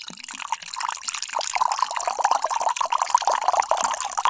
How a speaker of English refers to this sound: Perfect pour. That ought to help. Let's have some of this here whiskey.